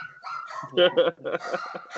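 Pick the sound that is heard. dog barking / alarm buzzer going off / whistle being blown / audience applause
dog barking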